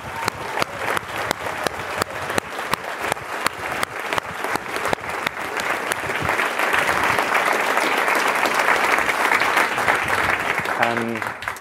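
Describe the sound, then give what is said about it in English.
A large conference audience breaks into applause, scattered claps at first that swell into sustained, dense, loud clapping, before a voice begins speaking at the very end. “so a round of applause for like their help as well.”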